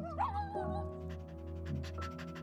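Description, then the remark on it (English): A puppy named Harold gives a short, eager whine, greeting with puppy kisses in a backyard, then pants rapidly in quick, rhythmic breaths, with a steady low hum underneath. “Honeybee and Captain EJ down from the helipad and into the backyard, where Harold greets you with puppy kisses and Mrs.”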